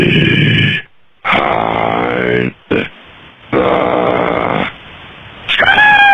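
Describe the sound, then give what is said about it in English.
A man screams and growls in several loud, harsh bursts with short pauses between, recorded in a phone voicemail, the sound thin and band-limited, ending on a rising, strained yell. “And we got a screamail here.”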